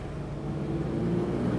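Throaty engine rumble of 1950s Jaguar saloon cars and racing sports cars rolling past, slithering a little as they take a 90-degree turn, a steady low drone that swells slightly louder as they go, with no voices.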